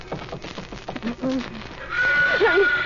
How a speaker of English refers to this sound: What? A horse?